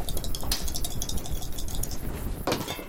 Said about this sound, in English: Forgot I had my dice thing here. Okay, my best roll is a 4.